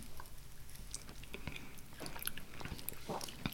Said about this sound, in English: So the first sip is very small. Kind of roll it around on your tongue.